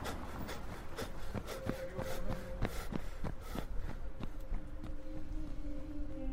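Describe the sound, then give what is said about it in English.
Quick, steady footfalls pound along in a brisk running rhythm as someone sprints down a street, each step a sharp slap, while a low sustained tone hums faintly underneath and shifts pitch partway through. “I sprinted down the street.”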